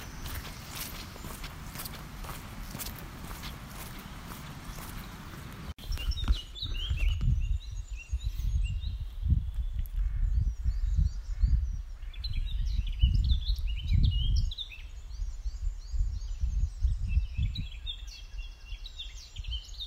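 A busy dawn chorus of many birds chirping and trilling at once, filling the air after a rush of steady noise fades, with footsteps crunching along underneath.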